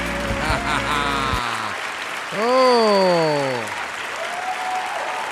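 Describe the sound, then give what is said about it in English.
A crowd applauds in welcome in a steady, dense wash of clapping, with loud tonal cries or whoops rising and sliding downward in pitch over it midway through. “A nice cordial welcome.”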